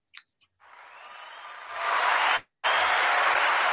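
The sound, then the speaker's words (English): A round of applause for England, the physical disabilities rugby league world champions, swells into a loud, dense clatter of clapping, cuts out for a split second, then resumes at full strength. No one speaks over it. “Yep, they get a round of applause as well.”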